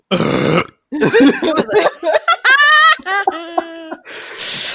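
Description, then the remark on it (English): A loud burp-like sound, apparently a voice imitating it: a harsh raspy burst followed by a string of croaky, pitch-shifting belching noises, ending in a breathy exhale. “who just before this pod let out the biggest, was it a burp?”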